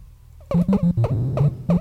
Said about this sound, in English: Donkey Kong. You are correct, sir. Donkey Kong.